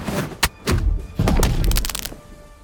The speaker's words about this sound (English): And you do exactly that, and we see with a nice thud the neck and the head slam onto the ground